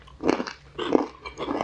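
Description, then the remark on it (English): Crunching as someone bites and chews something crisp, three rhythmic bursts of crackly chewing with brief pauses between, no talking. “These are really crunchy.”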